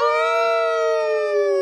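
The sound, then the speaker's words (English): A person imitates a howl in one long, sustained note with a rich, buzzing tone that slowly sags in pitch, loud and steady throughout with nothing else alongside it. “I'm going to howl.”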